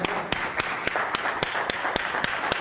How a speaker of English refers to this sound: Well, if you just give Jesus a hand clap tonight.